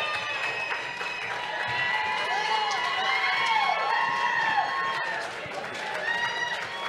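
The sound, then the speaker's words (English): A live audience applauds and cheers steadily for about seven seconds as a show's co-partner is brought up on stage, with a dense wash of clapping and rising, whooping voices riding over it at a fairly even loudness. “Big round of applause.”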